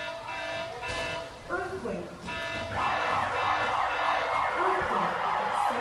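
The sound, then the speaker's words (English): A loud, steady electronic earthquake drill alarm blares continuously at the L.A. food bank at 10:19 a.m., its harmonic tone holding for several seconds while a murmur of food bank workers, who were packing heads of lettuce into boxes, talking and moving goes on underneath. “The L.A. food bank workers were putting heads of lettuce in boxes when the alarms went off at 10:19 a.m.”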